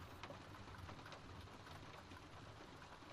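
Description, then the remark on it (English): Steady rain patters on a roof, a soft, continuous drumming with scattered individual drops tapping through the dense hiss. No voices, just the even wash of rainfall. “The sound is so obvious, but there's also the soft drumming of the rain on the roof.”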